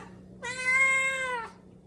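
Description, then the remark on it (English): A Siamese mix cat lets out one long, steady meow lasting about a second, clear, with only a faint low hum in the background and no talking. “Yeah, they're meowing.”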